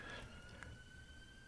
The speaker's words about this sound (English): That siren in the background is not my partridge alarm, which goes off every time I discuss game birds. It's just passing emergency vehicles. Okay. It's really close now, isn't it?